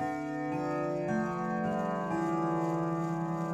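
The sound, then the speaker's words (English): A clock chimes a slow sequence of ringing tones, each note stepping to a new pitch and sustaining into the next, steady with no voices. “Growing up, my dad and I had a silent war going about the chiming clock.”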